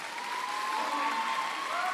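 A crowd applauds steadily for two seconds as a singer is called up on stage, a dense wash of many hands clapping at an even, sustained level with a faint tonal hum running underneath.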